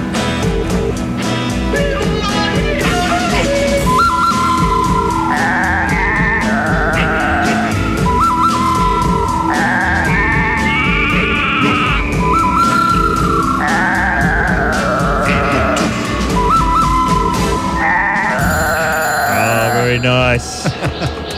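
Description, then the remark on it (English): Loud, busy theme jingle for the Talkback Mountain segment with goat bleats woven through it, wavering cries repeating over a steady beat and layered instruments for about twenty seconds. “Those goats need help.”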